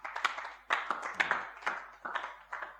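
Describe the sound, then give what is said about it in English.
A group of people clapping together at a church celebrating its second anniversary on 1st December, a loose, uneven patter of sharp claps rising and falling in bursts for a few seconds, with no one speaking. “It's a good thing for us to clap.”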